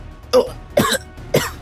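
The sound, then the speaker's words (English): Three wet, strained coughs spaced about half a second apart, fairly loud, each a sharp burst with a rough, gurgling edge, voiced by a person acting out a wounded character coughing up blood. “Coughs up blood.”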